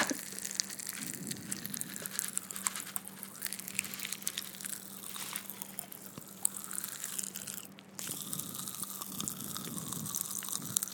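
Pop Rocks candy crackling and fizzing in a mouth, a dense, continuous stream of tiny pops and sizzles, with a brief lull before the popping picks up again.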